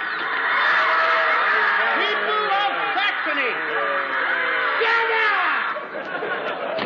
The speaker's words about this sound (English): Listen. Listen to the people shouting. They have been shouting for 5 days, but I dare not speak to them.